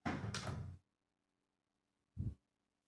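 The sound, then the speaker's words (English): A front screen door is opened by a UPS delivery driver dropping off a package, with a scraping, rattling swing lasting under a second, followed after a pause by a short, dull thump as it bumps shut, with no talking. “They were opening up my screen door, is what it was”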